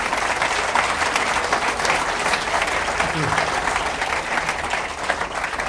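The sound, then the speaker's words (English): Steady, dense applause from an audience welcoming cycling author William Fotheringham fills the whole stretch, a loud continuous wash of many hands clapping at an even level without letup. “So please give a very warm welcome to William Fotheringham.”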